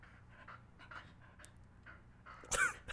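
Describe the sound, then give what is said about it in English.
A dog named Zuko sniffs near the microphone in a quick, breathy rhythm of short puffs, ending in a sharper, louder snort of air. No one speaks. “Yeah, I was just hoping Zuko would sniff louder and it would allow me to get out of that.”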